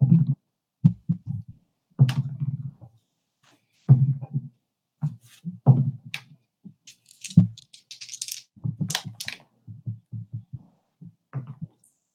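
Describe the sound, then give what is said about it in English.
Dice rolled for a monk character's turn in a game rattle and clack in quick bursts, many sharp knocks tumbling across a hard surface in uneven flurries with brief pauses between rolls, no one speaking. “Just clickety clackety clickety clack. Yeah, I love the sound of dice.”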